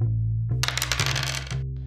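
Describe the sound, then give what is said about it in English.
A quick flurry of hard little clatters as plastic dice tumble, bounce and fall off a table, lasting about a second over a low steady hum, with no voices. “Does dice rolling bum you out?”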